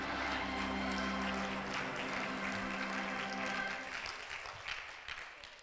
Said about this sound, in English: Come on, clap your hands in the sanctuary.